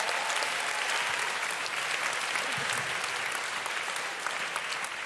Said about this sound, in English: And one more round of applause for our speakers, Felicity Ward, Ruth Walsh, Catherine Bohart, Deborah Frances White, Thurs Titley, and Nish Kumar.